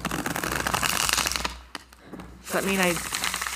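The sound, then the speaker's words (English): Crisp riffling of shuffled cards, a dense papery flutter for over a second, then a few quick taps before a voice starts talking. “So I'm going to properly shuffle them now.”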